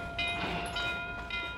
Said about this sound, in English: The chugging of the engine adopted a slower tempo. The whistle wailed to let those on the station platform know we were coming. The bell on the engine began to clang, and we'd arrived.